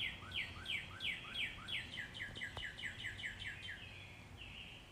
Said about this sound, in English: All right, enough of the birds. Wasn't that nice, though? I thought that was kind of neat. I just wanted to play for you what the sound of the birds were like in my neck of the woods the other day.